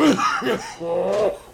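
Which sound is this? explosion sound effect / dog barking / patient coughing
patient coughing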